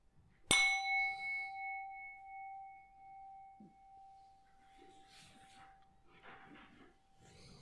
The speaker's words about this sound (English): So then I will ring the bell 3 times, then you can come out of the meditation.